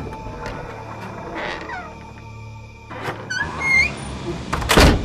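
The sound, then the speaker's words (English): A creaky old door of a creepy-looking abandoned shack swings open with drawn-out rising squeaks and a dull knock, then lands with a heavy thud near the end, over a low steady background hum. “You open the door”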